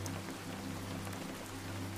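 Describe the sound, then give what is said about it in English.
Steady rain from a storm by the sea falls in a continuous, even patter with a low, constant hum underneath. No voices, just the soft, unbroken wash of rain throughout. “Rainy Bedtime Story for Grown-Ups”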